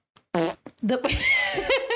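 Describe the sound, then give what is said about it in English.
A man imitates a fart with a wet, buzzy mouth noise, one short burst followed by a longer sputtering blast, loud, with a brief vocal sound mixed in. “For anybody that's new around here, my brother makes fart noises at any moment, but usually the agreement is he has to show his face.”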